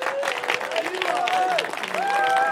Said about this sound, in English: Two males and two females. Get them a round of applause as they come up.